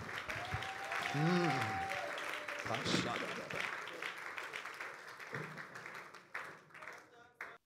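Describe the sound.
An audience gives the Lord a clap of victory, clapping in a dense, steady burst of applause lasting several seconds, with voices calling out over it, before the clapping thins and tapers off at the end.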